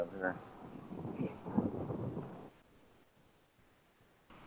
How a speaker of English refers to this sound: And it's windy out here.